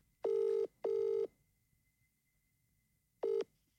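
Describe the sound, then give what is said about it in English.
Three electronic telephone dialing beeps as a call is placed to a listener who has won a pair of tickets: two steady tones in quick succession, then a shorter one after a pause of about two seconds. They are clear, with no voices. “We're so going to phone her, and she's won a pair of tickets for her and his friend.”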